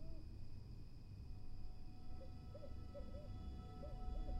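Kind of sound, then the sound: bird, owl hooting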